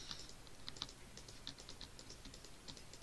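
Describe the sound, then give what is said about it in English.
Quiet, irregular clicking of a computer keyboard and mouse while someone builds a house, with short bursts of keystrokes and scattered single clicks over a faint background hiss. No one speaks. “Also, by the way, I'm building a house right now. That's probably why you hear a bunch of clicking.”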